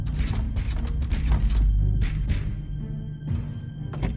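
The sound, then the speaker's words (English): A door handle is rattled and jiggled repeatedly on a stuck house door, with clicking, clunking mechanical bursts in an irregular rhythm, fairly loud, with no voices. “I can't seem to open this door!”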